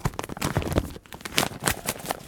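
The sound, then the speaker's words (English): Christmas-style Star Wars gift wrapping paper being torn open from a gift holding a Bib Fortuna figure, a quick series of sharp, crackly rips and crinkles in uneven bursts, with no one speaking. “Opening it up.”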